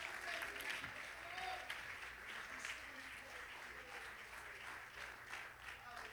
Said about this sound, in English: Oh, clap your hands and say hallelujah.